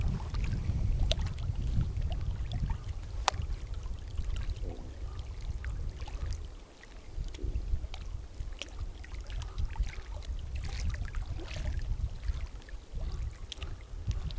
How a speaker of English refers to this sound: But I'm going to come a bit closer to the water, actually, so you can listen to these gentle freshwater waves up against the rocks. It's a really lovely sound here, listen.